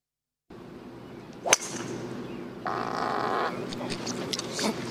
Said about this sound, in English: I want to know who did the fart. Because if Chalmers is... Let's just have a go again. I'm pretty sure it's Poulter that did the fart. Chalmers has just hit a massive drive with his driver.